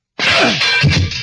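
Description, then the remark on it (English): A loud metallic crash as a heavy, locked steel cell door is smashed, with a harsh ringing clatter that sustains for about a second before cutting off. No voices are heard. “But steel can be smashed if it has to be.”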